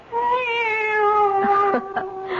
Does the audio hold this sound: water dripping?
no